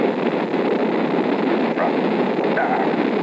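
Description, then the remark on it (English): A loud, continuous roar of the five Saturn V rocket engines, building up to 7.7 million pounds of thrust, as the rocket lifts off the tower, a dense rumbling wash of noise that holds steady without a break for the whole stretch. “The Saturn V lifting off the tower.”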